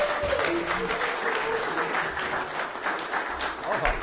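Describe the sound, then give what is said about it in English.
Steady audience applause for a performer who has just finished on stage, a dense crackle of many hands clapping at an even level throughout, with a faint voice briefly audible beneath it near the start. “Give her a hand. And keep it going.”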